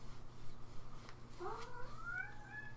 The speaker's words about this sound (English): Wow, now my cat is very upset that I'm still in here and he won't let him in. His food's in here, so that might be part of it, even though he already ate his breakfast and dinner.